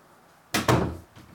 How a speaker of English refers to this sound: Can you close the door?